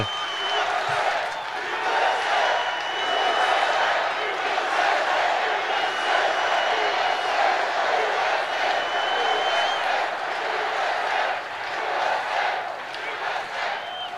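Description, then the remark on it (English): A crowd cheers and shouts in a steady, continuous roar that holds at an even loudness throughout, with many overlapping voices and occasional brief peaks. “Sounds like a small crowd.”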